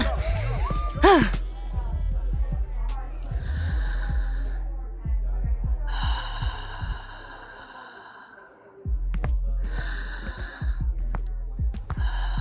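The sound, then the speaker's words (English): Someone doing breathing exercises at a party takes slow, deep breaths: a few long, hissing inhales and exhales separated by short pauses, over a low, steady background hum. “Are you doing breathing exercises at a party?”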